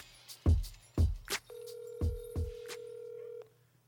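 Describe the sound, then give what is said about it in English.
A few dull, evenly spaced thumps lead into a steady electronic telephone tone that holds for about two seconds and then cuts off, like a phone call to the CEO of the PLL being dialed and connecting. No one speaks. “And this week we're going to phone call my brother and co-founder, CEO of the PLL,”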